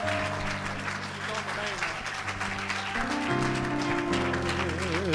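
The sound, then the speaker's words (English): An audience claps steadily, a dense wash of many hands, while sustained organ-like chords play underneath and rise in pitch toward the end, with a wavering tone. “Let's clap our hands.”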